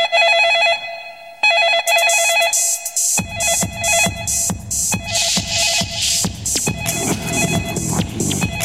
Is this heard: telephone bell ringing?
yes